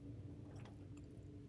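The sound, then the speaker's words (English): A quiet slurp of coffee being sipped, with a couple of soft wet mouth sounds and a faint swallow over a low steady hum. “That's another sip.”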